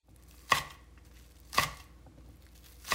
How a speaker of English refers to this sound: And so we're going to actually dice up our onions. We want these onions to, we want them to really break down with the flavoring and the cooking of the chicken and the potatoes.